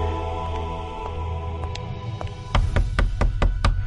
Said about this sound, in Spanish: Gervasia se acercó hasta el despacho de don Pedro y temerosamente tocó su puerta